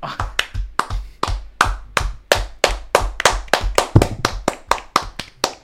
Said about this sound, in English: Clap it up one more time.